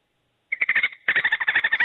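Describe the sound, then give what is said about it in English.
A person imitates dolphin chatter: a fast, high-pitched series of squeaky clicking pulses in two bursts separated by a brief pause, fairly loud, with no speech. “Because you sound like a dolphin.”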